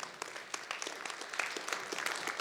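A crowd applauds steadily, many overlapping hand claps forming a dense, sustained patter that holds at a fairly even loudness for the whole stretch, with no voices breaking through.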